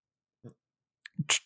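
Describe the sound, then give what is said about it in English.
Someone sipping water: a soft gulp, a pause, then a quick wet swallow followed by a short breathy exhale. Brief, quiet mouth sounds with no talking. “Sorry, I had to get a sip of my water there.”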